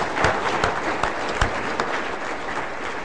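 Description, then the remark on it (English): Steady, dense applause from a large group giving God a round of applause fills the whole stretch, a continuous patter of many hands clapping with a few sharper individual claps standing out, no voices over it. “Oh, keep going, because God deserves a round of applause.”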